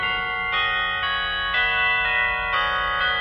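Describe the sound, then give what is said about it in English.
Christmas church bells from a village peal in a steady sequence, a new ringing tone struck roughly twice a second, each overlapping the last, with a low rumble underneath and no voices. “Or was it the bells from the village below?”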